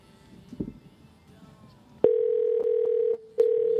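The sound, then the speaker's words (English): After about two seconds of faint background noise, a loud, steady telephone ringing tone sounds through the line on an outgoing call, briefly cutting out once before resuming. “It's not ringing.”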